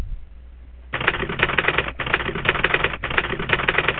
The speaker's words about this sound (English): Go, typing monkey, go!